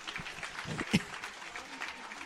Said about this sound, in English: Ladies and gentlemen, that exchange was so good, the ring announcer is clapping for it.